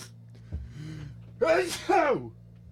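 A loud sneeze: a short catching breath, then two forceful voiced bursts in quick succession, over a steady low background hum with no talking.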